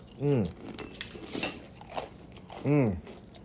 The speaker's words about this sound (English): And what you just listened to earlier, that was my second sip of coffee of the day. Some people say, oh, nothing like that first sip. Well, we putting in the second sip.